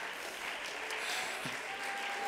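A standing audience claps steadily to rejoice in the Lord, a dense wash of overlapping handclaps that holds a sustained, fairly loud level throughout, with a faint voice briefly poking through the crowd noise.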